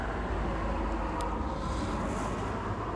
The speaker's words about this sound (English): There are a few cars driving by at this hour